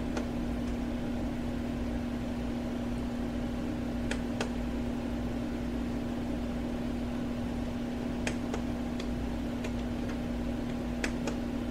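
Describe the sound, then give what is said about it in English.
An electric fan whirs with a steady low hum while sharp, faint clicks pop up in small pairs every few seconds as its speed settings are switched with a button on its remote control; no one speaks. “Okay, that seems to be making the speed changes of the fan.”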